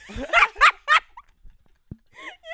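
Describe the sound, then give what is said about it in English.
A person growls like a lion, like Mufasa, letting out three or four rough, throaty bursts in quick succession, followed by a few softer, fainter vocal noises after a brief pause. “I really did not mean to do that, but I did. Like Mufasa. I just started to growl.”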